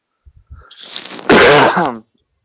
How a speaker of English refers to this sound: You might have to edit out a few of my coughs. I'm sorry, dude.